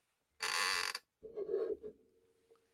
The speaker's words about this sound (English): And yes, I will WD-40 my chair tomorrow, I promise.